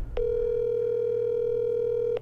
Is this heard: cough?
no